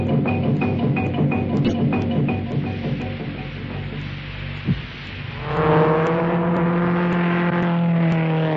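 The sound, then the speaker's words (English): A car engine idles with a low rumble in a Johnson's Rally car wax advertisement, then revs up strongly around the midpoint, its pitch rising as the car pulls away and accelerates, loud with no talking. “A man who knows how to handle his car.”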